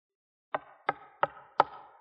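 Guards knock four firm times on a wooden door, evenly spaced, each with a short resonant decay, with no voices around them.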